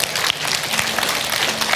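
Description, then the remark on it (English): An audience breaks into hand clapping, a dense, steady wash of many hands clapping at once, fairly loud and sustained with no talking over it. “Give a hand clap.”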